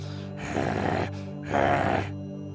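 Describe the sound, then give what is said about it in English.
A voice imitates the heavy panting of a character glaring back at someone: two loud, raspy breaths, each about half a second long, separated by a brief pause, with no words spoken. “Just glares back at you, panting heavily.”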